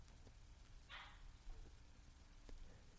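A single short dog bark rings out once over a steady low background hiss and rumble, with no other distinct sounds around it.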